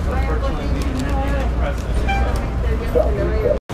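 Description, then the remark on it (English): A city bus rumbles as it pulls away after a passenger gets off, amid steady street traffic, its deep engine drone filling the scene with indistinct voices, before a brief cut near the end. “Okay, so I just got off the bus.”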